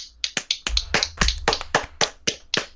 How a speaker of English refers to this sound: He did really, really, he did really well, and he deserves a round of applause.